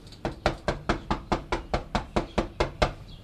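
Rapid knocking on a resident's door, about a dozen sharp, evenly spaced raps in a quick steady rhythm, fairly loud, with no voices.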